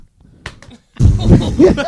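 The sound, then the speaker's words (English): Two quick, light slaps of a hand, fairly soft and close together, followed by a louder burst of voices or laughter that takes over the rest of the moment. “Bitch slap.”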